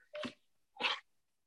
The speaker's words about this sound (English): I'm at my girlfriend's place. The dog is fighting the cat right now. Okay. Fun times.